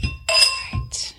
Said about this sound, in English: Wait, can we do a quick little cheers and then we'll sign off? Ting. Cheers. Yes. Clean glasses.